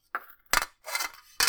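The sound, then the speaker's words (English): Metal pots, pans, wrenches, forks and spoons clink and clatter in a garden in a few bright, ringing bursts, with a short rattling jangle in the middle and no voices. “And in the garden, now concentrating seriously, Mink, with an assortment of pots, pans, and wrenches, forks, spoons,”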